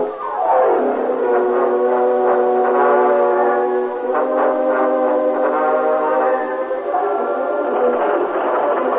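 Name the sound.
train running on rails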